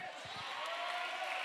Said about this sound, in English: Oh, I'm glad you clapped your hands like that.